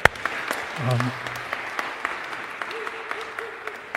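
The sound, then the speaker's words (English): An audience applauds the creative team who made the stage backdrop, in a steady, dense patter of clapping at moderate volume, with a brief voice or cheer rising through it and a low sustained tone later on. “a whole team of creative people who deserve our applause for what they have done.”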